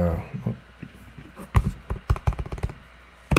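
Keys tapped on a computer keyboard while searching eBay for a Harley Davidson t-shirt: a quick, irregular run of sharp clicks that starts after a quieter stretch, with a few louder strikes bunched together and pauses between them.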